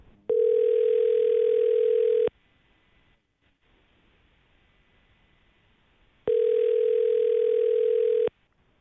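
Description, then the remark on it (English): A phone line rings twice with its outgoing ringback tone as a call is placed to a woman, each steady buzzing tone lasting about two seconds, separated by a quiet pause of roughly four seconds, clear. “All right, let's give her a call and see if we can get some answers for you.”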